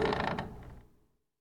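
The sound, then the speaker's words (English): A neat, clean front door creaks open with a drawn-out, grinding mechanical groan that fades away after about a second, heard on its own with no talking. “The door swings open.”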